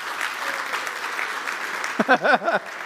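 An audience claps to celebrate the fathers present, a dense wash of applause, then near the end a few loud, wavering cheers or whoops rise above the clapping.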